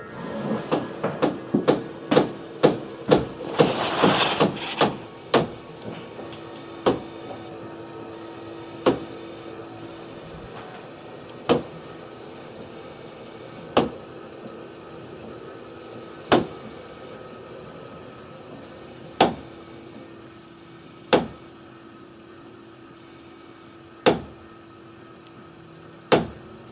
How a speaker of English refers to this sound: Or these slap-happy water lines. Note how it begins to sound like tapping on glass near the end.